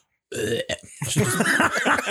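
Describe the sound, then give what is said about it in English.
A person loudly imitates their dog's burp after she eats fast and chugs water: a short croak, a brief pause, then a long, rumbling, drawn-out belch lasting over a second, alone. “She'll burp. Her neck extends real far.”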